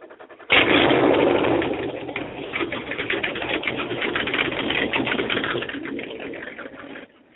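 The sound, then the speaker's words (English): The engine of the boat Breathless 2 is started at Bayside Marina, Walt Disney World: it roars to life abruptly, then settles into a loud, steady, rapidly pulsing rumble that continues for several seconds before cutting off. No voices. “That's Breathless 2 being fired up at Bayside Marina.”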